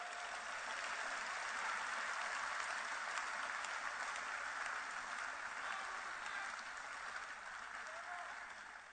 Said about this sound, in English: Wow. Clap your hands for the Bible.